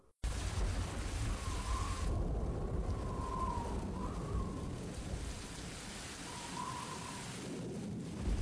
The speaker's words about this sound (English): That's no storm. That's a hurricane.